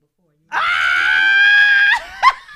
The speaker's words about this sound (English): Ah! Y'all, I'm yelling in this mic.